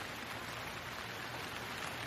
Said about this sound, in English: A long silence, where all you could hear was the pounding rain from the storm outside.